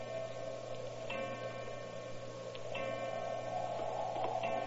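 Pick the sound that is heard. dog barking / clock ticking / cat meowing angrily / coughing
clock ticking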